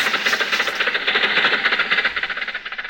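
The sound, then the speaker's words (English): A car engine chugs and sputters in rapid, regular pulses as the car drives into a drive-in theater, a steady, fairly loud rattling drone with no one speaking over it. “Come on, Jack. Drive inside.”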